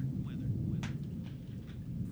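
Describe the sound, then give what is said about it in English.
A steady, heavy low rumble of thunder rolls under a constant hiss of rain, with a few sharp crackling bursts rising out of the storm noise, played as a weather segment intro. “Weather, rain, you got to give us two, though.”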